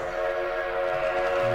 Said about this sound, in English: Did I hit a train horn?